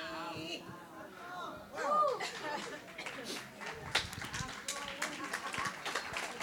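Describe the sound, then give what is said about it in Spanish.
Voices talk at first, then a round of audience applause, mostly women clapping, breaks out: a thin, uneven patter of hand claps that carries on steadily with murmuring underneath. “It seems like only the women are applauding.”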